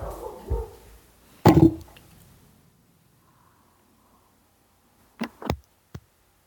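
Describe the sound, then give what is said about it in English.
A dog barks loudly: a single sharp bark, a pause of quiet, then a quick cluster of two or three barks near the end. No talking. “Yes, he was eaten by my dog half across the country.”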